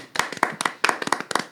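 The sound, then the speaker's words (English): A soft golf clap from a few people congratulating the Radish Magazine team, light scattered hand claps in an uneven patter for about a second and a half, quiet and polite rather than a full applause. “Golf Thank clap.”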